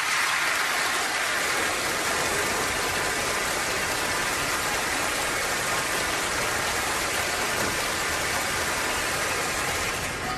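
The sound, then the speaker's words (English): A studio audience gives polite applause, a steady, even patter of many hands clapping at once that holds at a constant level for about ten seconds, with no voices over it. “So, polite applause in three, two, one.”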